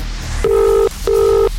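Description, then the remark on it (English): Two steady electronic beeps sound one after another, each about half a second long with a short gap between, as touch-tone keys are pressed while dialing a telephone number, clear. “Because if this is your number, you'll need to tell us today's winning total and you'll need to answer within five rings.”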